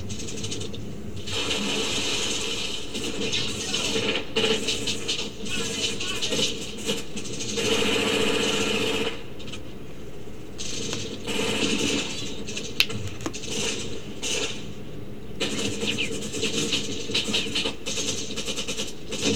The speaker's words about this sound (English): I don't know why they would ever try to start a helicopter in the middle of a firefight. That's like the last thing you'd want to do.